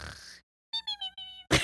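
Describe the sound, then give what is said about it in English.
A voice imitates snoring while pretending to sleep as a game: a breathy rasp, a short pause, then a few high wheezing whistles falling slightly in pitch, ending in a loud, harsh snort. “And we make different snoring noises.”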